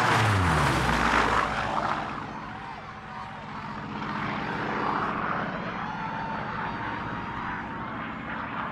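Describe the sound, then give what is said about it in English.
A propeller plane roars in loud, its engine just restarted, the note sweeping down in pitch as it soars low overhead over a gathering of guests, then droning steadily on with a buzzing, throbbing hum. “I clicked over the engine twice and she came to life. The plane soared so low over the guests, some of the men and women had to die for safety.”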